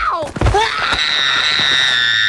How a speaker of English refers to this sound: He just sort of collapses into the floor and starts screaming.